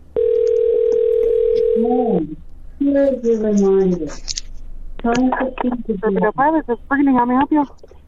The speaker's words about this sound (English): The phone's going to ring. 3, 2, 1. It's ringing. It's ringing.